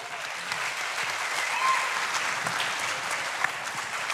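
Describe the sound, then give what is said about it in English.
A crowd applauds steadily for about four seconds for a business partner introduced at an evening event, a dense, even patter of many hands clapping at a fairly constant loudness with no voices standing out. “I don't clap for him, but I'm glad.”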